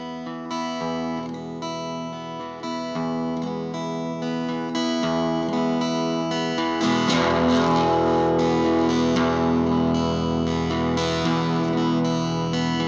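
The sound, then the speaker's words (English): An electric guitar played through a small valve amp pushed into overdrive, chords ringing with warm, gritty distortion that grows thicker and louder when the playing gets harder midway through. No one speaks. “The second audio clip is one of the things that I sort of showing why I wanted that sort of small valve amp, because you can sort of push it in ways that you.”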